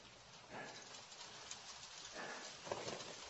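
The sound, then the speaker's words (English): Steady rain falling, a soft continuous patter with occasional heavier drops, fairly quiet and even throughout, with no voices. “I can't believe I didn't think about the likelihood there'd be rain.”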